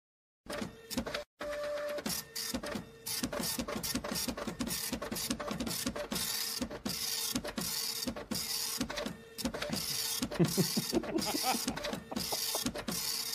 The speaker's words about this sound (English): I like how this show slowly evolves over time, where it's, first it was the graphic, and then it was we needed a printer sound